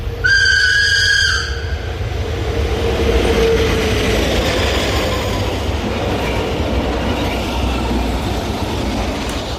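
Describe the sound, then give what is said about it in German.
A train in Switzerland rushes past, a loud steady roar of wheels on rails, opening with a brief blast of its horn before the rumble carries on to the end. “Das wäre dann die Schweiz zum Beispiel als Eisenbahnland oder als Transitland.”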